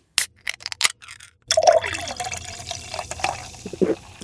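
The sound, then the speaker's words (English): A few short splashy bursts give way to a steady hiss of shower water pouring continuously, moderately loud, with no voices. “Time to go have a shower, I suppose.”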